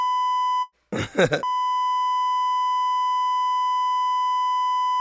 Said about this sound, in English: Yo, I had a few people said they don't like when we like beep shit out.